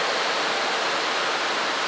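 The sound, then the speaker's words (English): A steady, loud rush of water floods over a stage and the musicians' instruments, a dense continuous hiss like water gushing across a surface, with no voices or breaks. “Those musicians, if you cannot even protect your instruments, look at water flooding them.”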